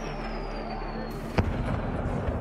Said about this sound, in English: On February 24, at about 5 a.m., we woke up from explosions.